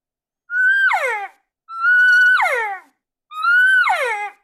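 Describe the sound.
Three drawn-out, nasal, excited, yearning cow elk calls, used once a bull is interested, with evenly spaced pauses, each holding a steady high tone and then sliding sharply downward into a whiny, yearning drop. No talking.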